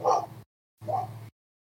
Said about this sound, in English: Hi, dog barking.